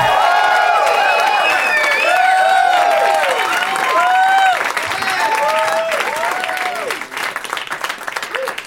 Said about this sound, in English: Nice clapping, white people.